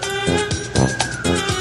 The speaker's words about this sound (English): Can you guys hear those sirens? Yes. Yeah, I was stopping to let it pass. Better than the train.